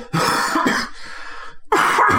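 Several harsh, close coughs in quick succession, a pair of sharp bursts, a brief raspy throat-clearing pause, then another loud cough at the end.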